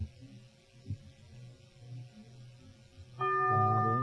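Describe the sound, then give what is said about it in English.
A single bell is tolled loudly near the end to mark a wrong answer in a quiz, its bright ringing tones sustaining after a stretch of low murmuring background noise. “The bell is tolled.”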